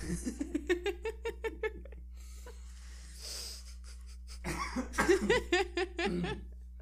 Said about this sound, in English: Sorry, I didn't mean to cough in y'all's ear.